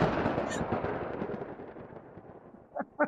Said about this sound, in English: I will willingly provide a lightning strike at any time. Oh, now it's a lightning strike. Whatever you want to call it. It's thunder. Are you ready for it? Yes. Bring the thunder.